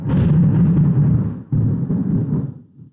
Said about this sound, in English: And whenever I make this point, we're going to hear a big thunderclap soon, I think.